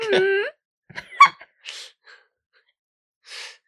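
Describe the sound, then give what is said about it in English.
A sneeze: a voiced, drawn-in gasp builds into a sharp burst, followed by a few short, breathy exhales and a final soft puff of air. “Bless you.”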